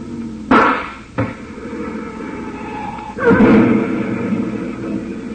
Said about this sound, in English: Truck starts slowly, Collister, but a bullet in the tire will ruin him every time.